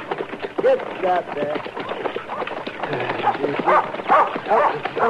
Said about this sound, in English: Get away. Get away, dog.